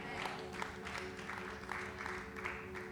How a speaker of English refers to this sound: Yeah, I see your claps. It's okay.